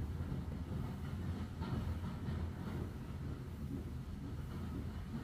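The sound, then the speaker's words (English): The Hogwarts Express steam train rolls along the track, a steady low rumble carrying soft, rhythmic chugs that stay fairly subdued throughout as the engine quiets, with no voices. “The puffs and chugs of the steam engine quieting.”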